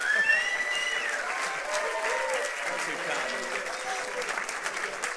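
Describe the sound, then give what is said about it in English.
Loud, sustained standing ovation from a large audience honoring Pastor Dino Rizzo, a dense wash of clapping with a few whistles and cheers rising over it near the start. “sometimes I have you stand and you applause, but I want you to give a double dose, high praise.”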